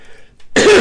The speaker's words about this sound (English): Well, that was a nasty cough.